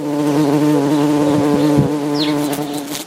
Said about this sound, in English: Bees in lavender.